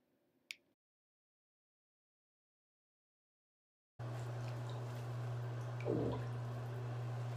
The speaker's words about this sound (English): So here are some of my nasty, bubbly bathtub farts. So I hope you enjoy the listen. They were really fucking nasty.